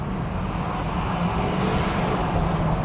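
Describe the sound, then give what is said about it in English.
An untuned, heavy lifted pickup truck of about 10,000 pounds accelerating to 30 miles an hour, its deep engine rumble and road roar steady and loud, as if heard from inside the cab, with no talking. “Don't go too fast because this is like 10,000 pounds of truck. All right. I'm accelerating.”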